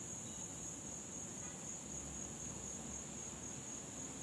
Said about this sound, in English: Like right now it's raining.